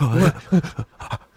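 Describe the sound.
Two people pant rapidly and breathily in imitation of eager dogs, a series of short voiced huffs in quick succession, fairly loud.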